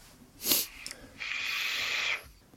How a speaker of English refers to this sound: I've actually risked it for a biscuit and put the entire 10 mils into the squonk bottle. So I'm kind of stuck with it in there now for the entire 10 mils. Yeah, sniff test.